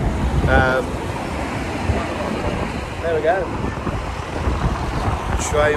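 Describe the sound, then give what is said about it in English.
A steady roar of city traffic rushing past on both sides without a break, loud and rumbling, in Paris by the Arc de Triomphe, while a person standing in the middle of the road briefly talks over the noise. “And we're now just casually stood in the middle of the road. Waiting to... there's traffic on either side.”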